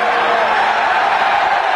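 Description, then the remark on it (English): A huge crowd cheering in one loud, unbroken roar at the end of a brawl, a dense wash of voices that holds steady for about two seconds with no single voice standing out. “That sounds like an enormous crowd.”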